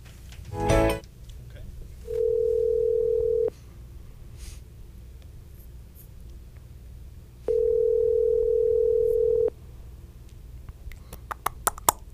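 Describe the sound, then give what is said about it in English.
Two long, steady ringback tones from an outgoing phone call being put live on air, separated by several seconds of quiet line hiss, with a brief thump before the first ring and faint clicks near the end. “So put him live on when it's ringing.”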